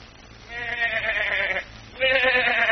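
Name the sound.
goat bleating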